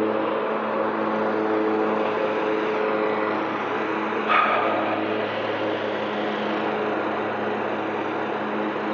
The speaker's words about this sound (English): Let me turn off this microphone for a second. It's super loud. Yeah, that's really loud. That tractor there.